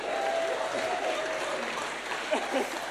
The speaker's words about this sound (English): Let's give our winner the round of applause.